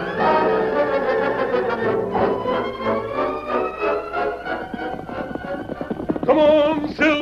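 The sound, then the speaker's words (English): Horse hooves gallop in a fast, steady rhythm, loud, over a sustained tonal backdrop, with a high wavering whinny-like cry rising near the end. “a horse.”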